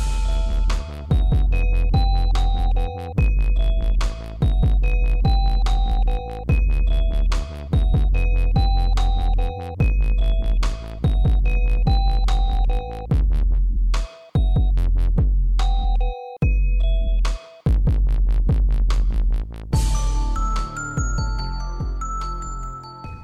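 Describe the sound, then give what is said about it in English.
Little electronic pinging beeps repeat in a steady rhythm over a loud, pulsing synthesized backdrop, with brief dropouts near the end before a brighter, busier run of tones. No one speaks. “Yeah, the little pingies. A little pingy.”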